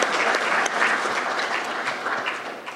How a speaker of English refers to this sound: Let's one more round of applause for our finalists. They did a great job this year.